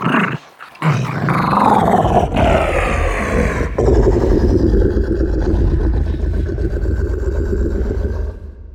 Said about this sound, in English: A good example would be the Rancor from Return of the Jedi. That's the monster that Luke Skywalker has to fight in the pit of Jabba the Hutt's palace. The Rancor's growls came from a feisty wiener dog pitched way down.